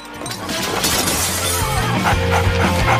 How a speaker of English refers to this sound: This is post, you can hear the dog has just grabbed the turkey and is running away.